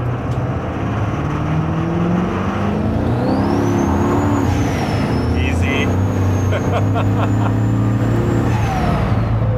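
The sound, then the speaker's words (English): A truck engine with an 800-horsepower tune roars and revs hard, its pitch climbing steadily as it accelerates on cold pavement with cold street tires on a 37-degree day, with a faint high whine and some brief clicking bursts over the constant rumble. “That thing is rowdy. Guys, you want to keep in mind something. The truck does do really well on the street.”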